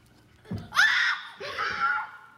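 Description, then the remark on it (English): A sudden high-pitched excited scream from a young boy after he successfully jumps over a stack of pillows, loud, rising sharply then trailing into a second squealing burst, with a soft thump just before it. “Now, I love his scream at the end because he impressed himself.”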